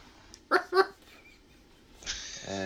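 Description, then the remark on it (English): Two short, sharp dog barks in quick succession, followed after a pause by a person starting to speak. “Your dog going absolutely nuts, Tony. I can't hear that. No. I can hear barking.”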